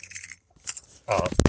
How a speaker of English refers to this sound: dropped my phone.